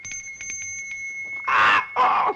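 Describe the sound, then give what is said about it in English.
A small bell jingles rapidly several times with a clear, sustained ring, followed by two louder, harsh noisy bursts. “I taught him to associate it with the sound of this bell.”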